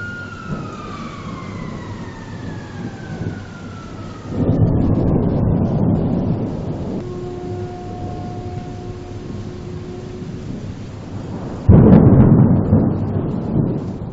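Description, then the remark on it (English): Steady rain hisses throughout, recorded from a balcony in Odisha, as the hooter of a nearby pellet plant slowly falls in tone and then holds level. Two loud, rumbling thunderclaps break in, one mid-way and another near the end. “He was at his balcony and it was raining and thundering outside.”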